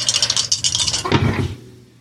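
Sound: rolling three dice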